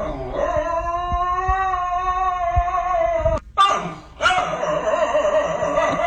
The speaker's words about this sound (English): This video of this dog that sounds like he's haunted. He does. It's like he's cursed. Here it is. Sounds like a goat.